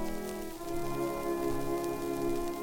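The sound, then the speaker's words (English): Orchestral music from an early 1917 symphony recording plays through a steady layer of surface crackle and hiss, the fine speckled noise running continuously beneath sustained, mellow tones at a moderate level. “You hear that crackle?”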